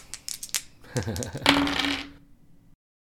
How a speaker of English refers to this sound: Apparently, I need to warm these dice up.